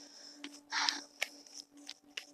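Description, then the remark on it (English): A deck of tarot cards being shuffled: a brief burst of riffling papery flutter followed by several soft, quick slaps and snaps of cards, with no one speaking. “I said I was gonna stop shuffling, but like, it's a deck.”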